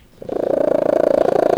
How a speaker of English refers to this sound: Want to hear a cat purr louder than an air conditioner? Meet Merlin.